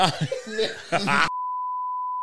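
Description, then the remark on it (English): A moment of lively talk and laughter is abruptly cut off by a steady, high-pitched censor bleep that holds one flat tone for about a second before ending sharply. “So now we have to beep that bit too.”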